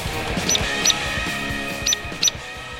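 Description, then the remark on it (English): A hairy woodpecker gives four sharp, high-pitched peek calls, loosely spaced in two pairs, cutting clearly over a steady background hiss. “Loud and hairy, like a heavy metal band.”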